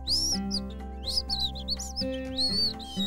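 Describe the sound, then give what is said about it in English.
Several birds chirp and tweet in quick, overlapping bursts of high, bright calls as they fly out of a spruce tree's branches in the early morning, over a steady low hum with no talking. “He shook his branches, and the birds tweeted, flying out of them.”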